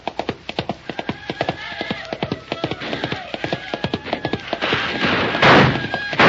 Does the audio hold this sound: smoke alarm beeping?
no